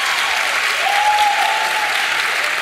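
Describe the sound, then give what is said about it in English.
A crowd applauding the news that a season 5 of the show will be made, a dense, steady wash of many hands clapping that holds at an even, fairly loud level for the whole stretch, with no one speaking over it. “I wouldn't be clapping.”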